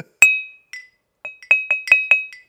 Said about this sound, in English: It's a coffee mug. That's what a coffee mug sounds like when you tap it with a sample of rum. I'm holding onto a sample of rum.